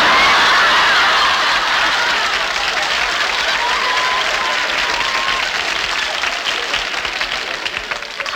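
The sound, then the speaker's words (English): Sustained audience applause, a dense steady clatter of many hands clapping at once, loud throughout and tapering slightly toward the end, with faint laughter mixed in. “What are you applauding?”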